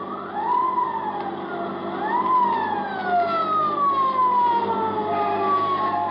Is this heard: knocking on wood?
no